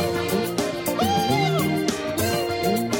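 A cat meows a few times in quick succession, its rising and falling cries standing out over a dense, steady background of sound.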